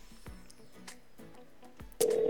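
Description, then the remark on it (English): A phone call being placed: a quick series of short dialing tones, then a steady ringback tone starts near the end, clear with no voices. “we're going to get Rooster Entertainment on the phone line right now”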